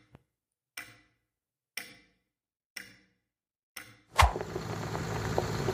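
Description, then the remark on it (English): A clock in a lobby ticks four times at a steady one-second pace, each tick crisp, before a sudden louder burst gives way to a sustained wash of background noise. “When did we put that clock in the lobby?”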